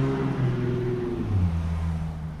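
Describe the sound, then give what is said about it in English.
A loud car engine rumbles past, its low droning pitch rising and falling as it drives by, with no voices over it. “Sorry, there's like a loud car.”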